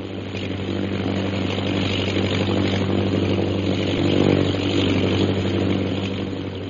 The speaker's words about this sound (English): The plane's circling the camp. It'll be over us again in a minute. Look.